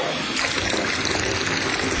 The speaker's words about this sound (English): Sorry, I just do this to irritate our Queensland listeners. The sound of water being wasted. Drives them nuts.